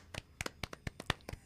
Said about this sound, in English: Let's give her a little round of applause.